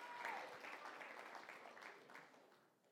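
An audience breaks into steady applause for a volunteer being called up on stage. A dense wash of many hands clapping at once holds fairly loud before gradually thinning and fading out.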